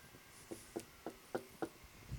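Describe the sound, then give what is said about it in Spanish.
Five steady knocks on a door, evenly spaced, standing alone against a quiet background with no one speaking. “dice que está a la puerta y llama.”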